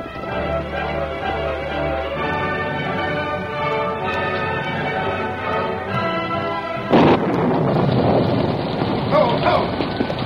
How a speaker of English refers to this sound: He had to fight his way against the wind-driven rain to reach the house.